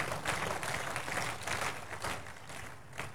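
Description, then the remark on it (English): A church audience claps for Jesus in a steady, dense wash of applause that holds for a few seconds, fairly loud, with no voices standing out above it. “Are we clapping for Jesus?”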